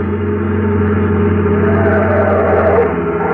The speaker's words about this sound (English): car coming up that highway now. Yeah, it sure looks like them. Boy, they must be doing 90.